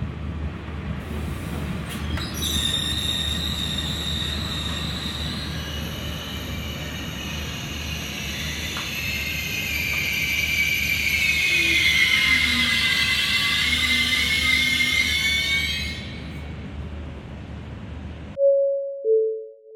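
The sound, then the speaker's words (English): A train pulls into a station platform, rumbling in with a loud, sustained metallic screech of brakes rising over the low rolling noise, building and holding for several seconds before cutting off abruptly near the end. “Just as he turns to hail the closest sky cab, the train slides in with a blood-curdling screech.”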